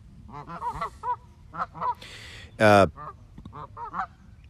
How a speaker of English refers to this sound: Quack, quack.